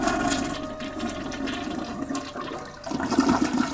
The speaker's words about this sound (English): Lucas flushed the toilet and slammed down the seat.